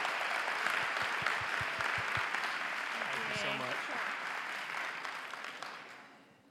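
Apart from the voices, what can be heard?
audience applause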